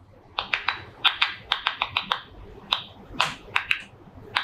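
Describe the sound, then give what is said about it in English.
A rapid, irregular series of sharp clicks and pops, about fifteen in four seconds, each a brief crisp snap like fingers snapping or keys tapping. These are ultrasonic stress sounds of a tomato plant that is cut or dehydrated, recorded by Tel Aviv University researchers and frequency-shifted so human ears can hear them, with no talking. “That's the sound a tomato plant makes when it's cut or if it's dehydrated.”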